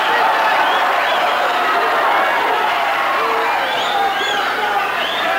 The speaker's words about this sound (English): Whistles from the crowd here. Directing to Ken Patera, taking off his warm-up pants.